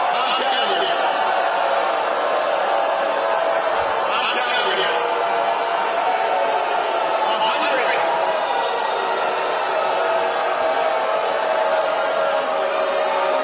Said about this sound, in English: Can you hear that? That's crazy. Anger? Yeah. He knows how to warm up a crowd. Yeah. Such a long, sustained boo. Who's sitting there going, boo?